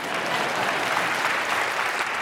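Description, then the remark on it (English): An audience claps steadily, a dense, even wash of many hands with no pauses, holding at a constant fairly loud level throughout. “Oh, yeah, you can clap that.”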